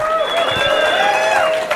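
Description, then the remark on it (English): A comedy club audience at the Comedy Mothership cheers and applauds loudly and steadily for a comedian, with whoops and shouts riding over a dense wash of clapping that holds for the whole couple of seconds. “Comedy Mothership, make some noise, huh?”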